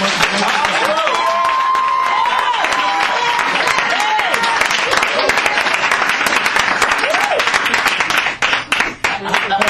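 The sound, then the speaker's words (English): A church audience clapping their hands in sustained, dense applause, with cheering and excited voices rising over it before the clapping thins out near the end. “Now, if you really believe that, just clap your hands.”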